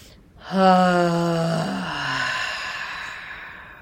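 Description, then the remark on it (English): A single forceful, voiced 'haaa' pushed out on the out breath during a breathing exercise, loud, with a sudden start that sustains for about two seconds before trailing off into a breathy release. “And then on the out breath, we're going to push out with the ha sound.”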